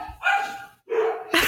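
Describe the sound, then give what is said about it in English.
A dog barks twice in drawn-out, whiny yelps, fairly loud, followed by a sharp, noisy burst at the end. No one speaks. “Like, the dog's like, fuck you, actually.”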